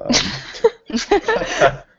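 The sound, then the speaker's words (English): Harsh coughing in two short clusters separated by a brief pause, each a rough, breathy burst with a few rapid hacks. “I swear I'm not getting emotional. I just have a cough.”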